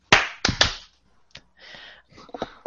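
Three loud, sharp claps land in quick succession, slightly out of sync, as a group tries to clap together on a 3, 2, 1 countdown; softer scattered noises and faint rustling follow.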